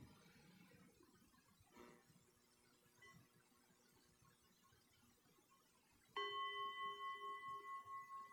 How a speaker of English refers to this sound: And I'll go ahead and ring the bell to close the practice. And when I do, feel free to just lift your eyes and move about if you'd like.